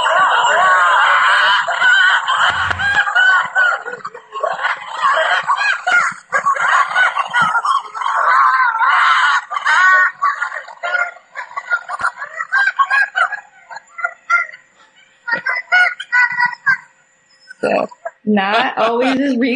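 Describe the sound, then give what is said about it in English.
A wolf family of six, two parents and four pups, howling together in August, the adults' wavering howls tangled with high, squealing yips and yelps from the pups, a loud, chaotic, overlapping chorus that keeps going nearly nonstop. “Yeah, but that is six wolves, two parents and four puppies trying to howl.”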